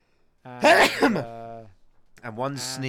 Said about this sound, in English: And one sneeze in the making.